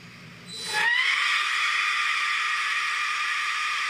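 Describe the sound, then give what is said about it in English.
A death whistle driven through a leaf blower attachment kicks in with a quick rising sweep, then holds a loud, shrill, harsh scream layered over rushing air hiss for several seconds. No one speaks. “This is death whistle through with the leaf blower.”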